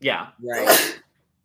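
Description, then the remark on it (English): A single loud sneeze with a voiced build-up and a sharp, breathy burst, following a brief spoken word. “Bless you.”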